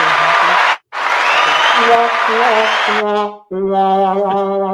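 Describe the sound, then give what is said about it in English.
A canned applause effect: a dense burst of clapping, a brief pause, then more clapping that fades into loud, sustained tonal whooping or cheering. “Look, I'll give you some claps.”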